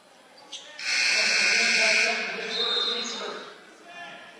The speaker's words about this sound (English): Now both teams will go to their bench here at the buzzer.